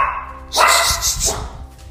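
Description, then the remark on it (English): A dog barks sharply twice in quick succession, loud, with a faint whine or yip at the start and no talking over it. “and there's a dog.”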